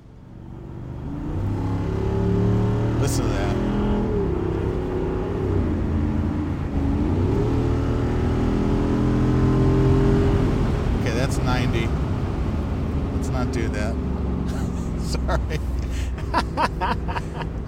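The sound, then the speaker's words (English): A softly sprung car's engine roars up loudly and steadily, its pitch climbing and dipping as it accelerates hard and the car rears back, with scattered chuckles and murmuring voices breaking in toward the end. “The thing is so softly sprung that it just kind of rears back up when you accelerate, and all the mass loads, they all shift to the back.”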